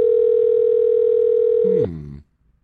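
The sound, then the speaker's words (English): A telephone call's ringing tone hums steadily and loudly for nearly two seconds as a call is placed, then breaks off into a brief falling, wavering tone before cutting to silence. “we'll see if we can get Holly Hendricks on the phone.”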